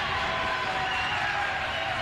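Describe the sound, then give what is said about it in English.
A packed gym crowd of Lady Panther fans cheers at a Stone Memorial basketball game, a dense, steady roar of many voices that holds at an even, loud level for about two seconds. “You can hear this crowd. I mean, this place is packed full of Lady Panther fans for sure.”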